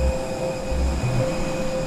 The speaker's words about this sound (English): All right, we are off the plane walking into the airport. I suppose this would be the first time we've actually stepped foot in Namibia.